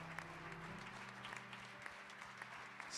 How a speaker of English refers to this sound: In Jesus' name. Clap your hands and bless the Lord this morning.